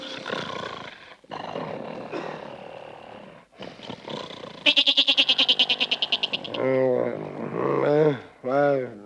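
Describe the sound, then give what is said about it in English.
A goat bleats loudly at night with a long, quavering, stuttering baa, followed by several shorter rising bleats, after a few seconds of rough, muffled vocal noise. “Oh, listen to that goat, Peg. He's been baaing all night.”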